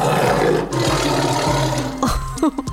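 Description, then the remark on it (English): A big cat roars in a deep, rumbling growl that swells and holds for a couple of seconds, then breaks into shorter throaty grunts at the end. “The reason most big cats can't purr in the same way a pet cat would is because their bodies have evolved to make a different sound.”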